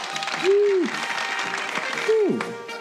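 Steady crowd applause fills the scene, a dense wash of clapping, with two short rising-and-falling whoops or cheers cutting through it.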